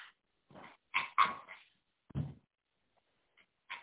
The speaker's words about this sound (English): Coyotes. Once a menace to travelers. Missile bases run them off their hunting ground.